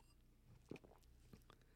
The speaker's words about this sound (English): And, you know, every once in a while, you got to sip on a little whiskey. In the weeks past, you know, it's been a little light on that. So I'm going to take a quick moment just to take a sip here.